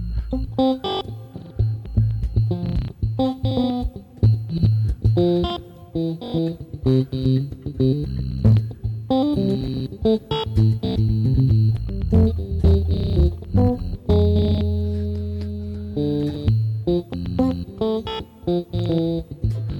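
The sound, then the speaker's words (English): A filtered bass line with a gritty, bitcrushed, lo-fi texture from sample rate reduction plays a steady rhythmic pattern of punchy notes, with sharp clicky transients cutting through and no voices. “That's just natural sound of the bass, but I'm filtering it a little bit. Maybe a little bit crushing as well, or sample rate reduction.”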